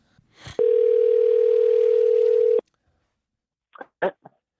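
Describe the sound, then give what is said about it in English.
A single long ringback tone of an outgoing phone call to a musician, a steady loud electronic hum lasting about two seconds, followed by silence and a few short faint clicks or bursts. “Sky Daddy Conwell is in my phone. As you can see, I am not a professional singer. Is it ringing?”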